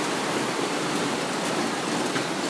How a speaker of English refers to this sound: So we're actually podcasting, walking over a bridge, over the stream, river.